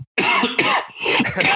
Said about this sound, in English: I'm going to cough. It's going to be obnoxious.